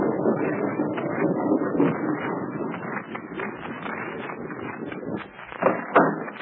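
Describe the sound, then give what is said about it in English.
A heavy tank rumbles steadily past through a narrow lane, followed by a car, a dense grinding roar with clanking, rattling bursts throughout, swelling briefly near the end as a movable rock scrapes and rakes back into place. No one speaks. “The tank rumbles through, followed by the car. The rock rakes back into place, and the sentry smooths out the track that will make it close.”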